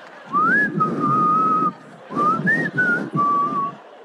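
An audience member at a show whistles loudly in two sliding, warbling phrases with a short pause between them, over a rough, noisy background.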